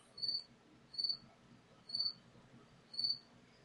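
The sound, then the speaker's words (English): A cricket chirps in four evenly spaced, high-pitched bursts about once a second, faint against a low background hum with no talking. “Somebody kill that cricket.”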